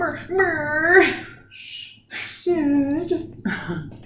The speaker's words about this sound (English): What's wrong with that dog? What? What's wrong with that dog? With Sid? He probably wants up on the couch.